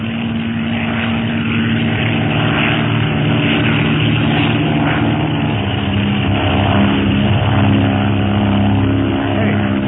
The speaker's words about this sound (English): Hey, what's that? The seagulls are getting kind of big around here. It's a plane, all right. An octopus plane. What? Yeah, don't you recognize it? Even the light of dawn. Only it's painted black.